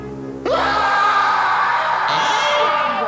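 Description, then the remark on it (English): A loud, piercing scream bursts in suddenly after a brief quiet moment and holds for about three seconds, shifting in pitch partway through, with no talking around it. “You'll get a real scream out of what you'll find in the dungeon.”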